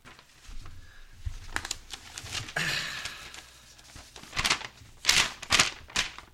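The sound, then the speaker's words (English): Paper crinkles and rustles in a series of sharp, irregular bursts, with a longer scrunching stretch partway through and several loud crackles near the end. Nobody speaks. “That's the paper.”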